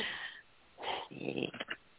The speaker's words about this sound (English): I'm shuffling, making shuffling sounds here.